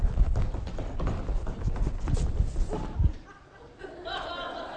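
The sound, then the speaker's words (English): Feet stomp rapidly and heavily on a floor, acting out stomping out a fire, a flurry of loud, uneven thuds for about three seconds, followed by a quieter stretch with faint voices and chuckling. “I'd be stomping out that fire, boy.”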